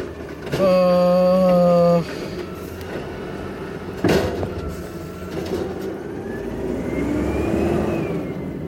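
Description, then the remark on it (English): A garbage truck's gasoline engine rumbles loudly and revs, its pitch climbing steadily toward the end, after a brief, steady horn-like blast near the start and a sharp thump in the middle. “Yeah, get gigantic trucks that run on gasoline to have gigantic mechanical parts made of metal and that need oil, and fuck you, you mechanical monstrosity, you piece of shit.”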